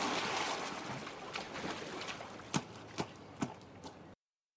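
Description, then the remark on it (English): Someone splashes while climbing out of water: a churning wash of water at first, then three or four sharp, evenly spaced splashes. No one speaks. “Trying to get out of water happens for a few more seconds.”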